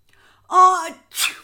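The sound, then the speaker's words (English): One loud sneeze, a voiced rising 'ah' breaking into a sharp, hissing 'choo', alone. It sounds like a person acting out the sneeze with their voice. “He sneezed loudly again and again.”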